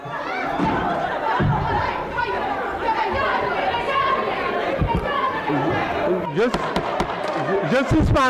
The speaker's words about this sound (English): This morning, just wild video shows the moment tensions boiled over. This is in Senegal's parliament, and there's an all-out brawl.